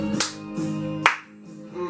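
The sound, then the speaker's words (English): A music track with sustained tonal chords and a clap beat: two sharp, bright handclap hits land about a second apart over the steady, moderately loud backing. “Good clap track.”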